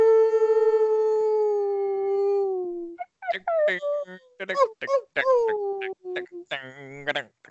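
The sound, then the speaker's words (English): Several people let out a long, loud wolf-like howl that slowly falls in pitch, then break into excited yips, shouts and laughter-like cries imitating a wolf pack. “One, two, three. Howl!”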